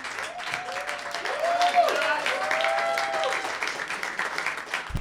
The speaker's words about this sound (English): Thank you guys so much for coming out. Give yourselves a round of applause here.